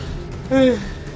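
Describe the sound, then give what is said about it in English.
A short, voiced yawn rises out of quiet about halfway through, a breathy, tonal sigh lasting only a moment before fading back to low background hum. “That's a yawn there.”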